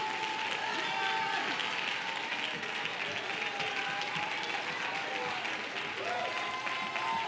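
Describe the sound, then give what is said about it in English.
A Pentecostal audience claps and shouts about the power of the Holy Ghost in a steady, dense roar of applause that holds for several seconds, with excited voices calling out over the continuous clapping. “Come on, if you've got it, you ought to get on your feet and clap your hands and shout.”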